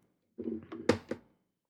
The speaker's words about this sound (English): You knocked the iPad over.